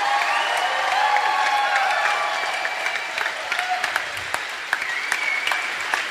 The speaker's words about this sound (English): These guys deserve another round of applause. You guys blew me away. Thank you.